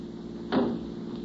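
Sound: car door opening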